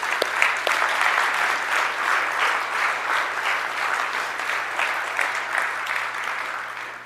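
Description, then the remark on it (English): Sustained applause from a large crowd in Akron, Ohio, in 2012, a dense steady wash of clapping that holds for several seconds before easing slightly at the end, with no voices standing out. “If you, like me, have seen the evidence of a risen Savior, the power of the Spirit that is alive and well and changing lives still today, 2012, in Akron, Ohio, I want to see some applause and say amen.”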